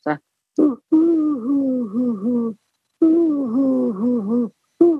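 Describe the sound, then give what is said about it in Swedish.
A human voice imitates pigeon cooing, with a few short low hoots followed by two long, wavering coos separated by a pause, fairly loud. “men det kan bara vara en av mina senaste hur jag har lyssnat in duvor, hur de låter. Jag tycker synd om dem för att de är så enformiga och det här hu.”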